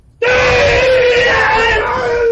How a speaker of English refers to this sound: Now, the screaming, this is to increase power, to try to frighten your opponent and give added strength to your techniques. Does it work? Yes, very effectively.